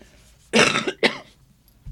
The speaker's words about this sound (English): I'm coughing.